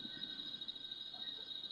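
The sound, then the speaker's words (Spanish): Cicadas buzz in a steady, unbroken high-pitched drone that holds level throughout, fairly quiet and with no voices or other sounds over it. “Yo escucho todos los ruidos al mismo tiempo, como por ejemplo las chicharras, la vecina hablando, mi hermana hablando, esos truenos, todo.”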